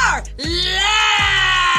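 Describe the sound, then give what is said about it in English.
A person lets out a loud, sustained scream lasting over a second, starting with a brief rising cry and then holding steady and strained. “I was going to scream.”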